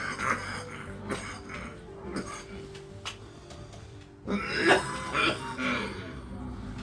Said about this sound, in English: Oh yeah, let's have another cigarette. So we can cough.